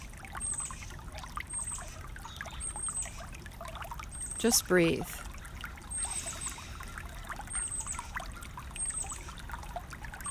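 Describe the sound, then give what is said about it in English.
A creek flows steadily over moss-covered rocks with a constant gentle wash and trickle, fairly quiet, while a calm voice speaks softly over it. “We're listening to the creek here, the water. It's gently washing over the moss-filled rocks.”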